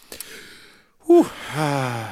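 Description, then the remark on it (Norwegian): After a brief near-silent pause, a person who had forgotten to breathe draws in a sudden, loud, deep gasping breath, which trails into a longer voiced, breathy exhale. “Nå glemte jeg pusten igjen.”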